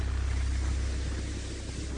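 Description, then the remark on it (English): Steady, loud rumble of open water and wind around a fishing boat in waves estimated at about 4 feet high, with a heavy low-end roar and hissing wash that continues without pause; no voices are heard. “And so while this water looks unusual for us, it certainly does not look big enough to make professional fishermen be scared for their lives.”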